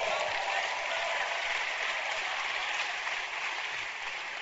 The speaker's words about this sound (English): Clap for that girl.